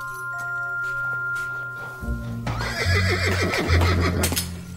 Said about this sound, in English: A horse.